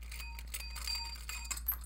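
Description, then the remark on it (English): A metal bell whose silver part has been unscrewed so it is loose is rung repeatedly, giving a thin, rattly jangle of quick strikes with short metallic tones that buzz rather than ring cleanly. It is fairly quiet, and no one speaks. “If you can actually unscrew your bell, if you like take the silver part and unscrew it, it gets all loose.”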